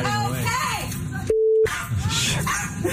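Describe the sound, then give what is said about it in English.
A single steady censor bleep, a pure mid-pitched tone lasting about a third of a second, cuts sharply into a woman's speech, covering a racial slur as she drives away, with talking continuing on both sides of it. “We should point out that the beeps you're hearing right now, she's just dropping the N-bomb as she drives away.”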